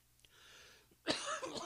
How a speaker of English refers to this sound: That's the cough, man. That's all that's left of this Rona is this cough that just lingers. If I drink something too cold, it'll definitely trigger the cough.